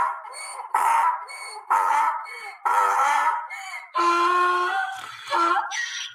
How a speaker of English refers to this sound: Y'all hear that donkey straining under the stress of being so silly?